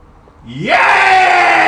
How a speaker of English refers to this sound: Daily cathartic scream with a three count in 3, 2, 1.